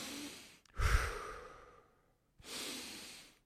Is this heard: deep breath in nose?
yes